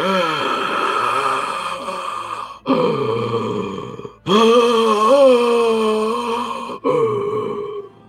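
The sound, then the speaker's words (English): A voice imitates the constant low, painful breathing of a gross, melting-flesh creature, with drawn-out rasping groans in four long breaths and brief pauses between. Loud, with no other sounds around it. “And it's just got this constant low, like painful breathing.”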